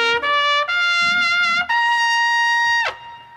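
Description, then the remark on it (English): A loud trumpet fanfare climbs through a few quick rising notes, then holds a bright, sustained final note before cutting off, with no voices over it. It is played on a show to honor Doug Benson. “Somebody says something, we crescendo, we bring in the trumpets, and we show Doug Benson the respect he deserves.”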